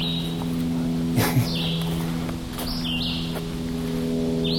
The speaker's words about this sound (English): Who's that guy? You recognize that one? Sounds like a robin that's kind of gone insane. I notice a lot of birds sound like robins.